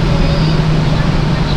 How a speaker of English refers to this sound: I'll let this car pass. He's just gonna sit here, huh?